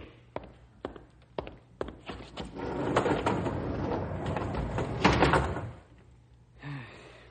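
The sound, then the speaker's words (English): Doors being closed: a few sharp clunks and knocks, then a long heavy rumbling slide that ends in a solid thud, loud, with a short shuffle afterward. “Close the doors”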